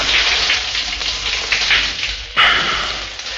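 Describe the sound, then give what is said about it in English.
Cold shower water runs in a shower cubicle with a person inside still clothed, a steady, dense hiss of spray, with a sudden louder surge partway through as the stream shifts. No one speaks. “Finally, I crawled to the bathroom on my hands and knees, turned on the shower, crawled into the shower cubicle, clothes and all.”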